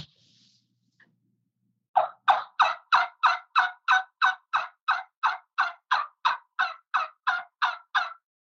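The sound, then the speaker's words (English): A homemade trumpet-style turkey call made of mud-cured Osage orange wood, blown in a steady run of about seventeen loud, evenly spaced yelps, clear, imitating a turkey, with no talking over it. “And that's one of your trumpets, right? Yeah, that's one I made the other day.”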